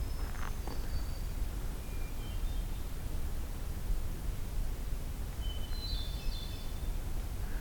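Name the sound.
magnolia warbler song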